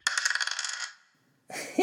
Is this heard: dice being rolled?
yes